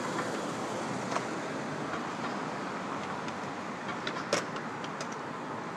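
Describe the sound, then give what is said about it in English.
A steady, enveloping rumble of a subway train in a station as a passenger gets off the train, with a few brief metallic clicks and squeaks rising over the constant roar; no one speaks. “Exiting the subway wearing sunglasses, I feel like a vampire.”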